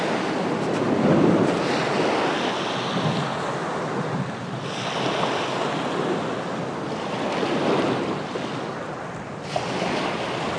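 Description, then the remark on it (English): Waves of a turquoise blue sea wash onto the shore in sunlight, in steady, rolling surges, each swell building and receding in a broad, continuous roar with a breezy hiss, no voices present. “In front of me lies the turquoise blue sea.”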